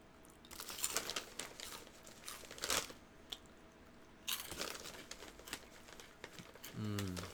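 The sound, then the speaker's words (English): Crackly paper crinkling as a Cheeto is put on a piece of paper, in two bursts of sharp, irregular rustles separated by a short lull. A voice starts just at the end. “So, I put the Cheeto on a piece of paper.”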